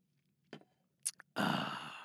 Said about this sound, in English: So, first off, we have to take a sip of this fine, high-quality H2O.